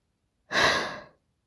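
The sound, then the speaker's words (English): A single breathy, airy exhale from a person mid-yawn, their sixth yawn, fairly soft, swelling quickly and then tapering off over under a second, with no talking around it. “That was yawn number six.”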